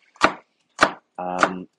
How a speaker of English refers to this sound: And this is me doing, this is me chopping onions.